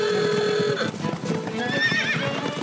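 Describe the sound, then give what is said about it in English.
A horse gives a long, loud whinny, then a second neigh follows, while a steady rhythm of hooves clip-clops underneath. “Engine-powered machines have replaced the horse in a number of ways, but horses have been our companion and helper for thousands of years.”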